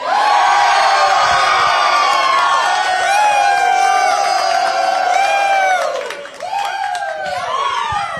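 A lively crowd at Rounders in Tuscaloosa chants and cheers loudly and continuously, many voices rising and falling together in drawn-out shouts, with a brief dip near the end before the roar picks back up.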